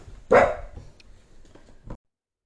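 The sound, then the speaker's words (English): A single sharp bark from a dog named Buttercup rings out, followed by a brief low whine or grumble and a smaller yip near the end, with no talking. “She's trying to talk too.”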